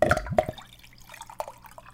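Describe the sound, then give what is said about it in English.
Liquid glugs out of a fish-shaped novelty pitcher in a couple of loud, hollow, bubbly gulps, followed by a few fainter gurgles and drips as the pour trails off; the glugging comes from the way the pitcher's handle is shaped. “It's a pitcher shaped like a fish that when you pour it, it makes this sound.”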